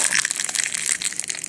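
Brittle boiled eggshells crunched in a hand, a dense run of sharp, dry crackles and snaps that keeps going steadily throughout, loud and bright with no voices.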